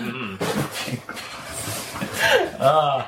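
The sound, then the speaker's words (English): A dog pants in quick, breathy bursts and lets out high, wavering whimpers, fairly loud, with a nasal whine rising near the end and voices in the background. “I love how your dogs are reacting so much to these.”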